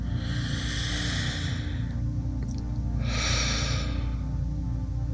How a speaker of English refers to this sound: Your nose, your throat, your chest, your belly, just pick one and settle in on it as an observational target for your breath meditation. A deep breath would help with that right now, just to settle you in.